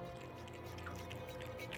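A cat named Midnight slurps milk from a dish set out in a barn, with soft, wet lapping noises repeating in quick succession, quiet, and no voices.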